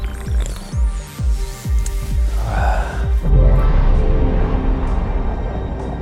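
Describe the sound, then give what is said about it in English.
A run of soft, low gurgling bumps, then a sudden hiss as a can of cherry limeade seltzer cracks open, followed by steady fizzing and sipping. No one speaks. “But before I can say anything, she thrusts the can into my hand. Cherry limeade.”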